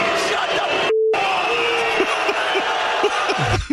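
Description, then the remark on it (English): A packed tennis stadium crowd roars continuously, yelling and shouting at a player. A brief censor bleep tone cuts in near the start, and the dense noise stays loud throughout. “It's bleeped, but listen to him with the crowd and everything.”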